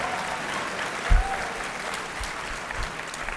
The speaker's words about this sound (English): Clap for me.